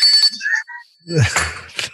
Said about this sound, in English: I've had, somebody I know does cameos with this Bell and a Santa hat.